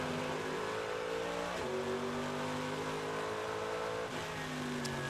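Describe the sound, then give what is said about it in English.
Loud GT3 race car engines, fitted with ABS, roar continuously at Road America, with harmonic tones dropping sharply twice as the cars brake and downshift, one gaining under braking on a Corvette ahead, then climbing again as they accelerate hard. No voices are heard. “Junker-Dahler now actually gaining under brakes on the Corvette ahead of him”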